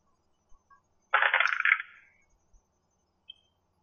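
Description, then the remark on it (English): Dice rattle and clatter across a hard surface in a short, busy burst lasting under a second, with a few faint clicks before and after in otherwise quiet surroundings; a different die is rolled for a constitution saving throw. “Doing a different dice with this one.”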